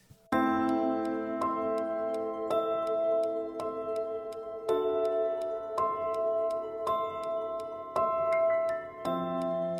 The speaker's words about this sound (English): I remember like you wrote a little blurb about it and you said you sampled a clock ticking. I don't know if it was a grandfather clock, but like mm-hmm.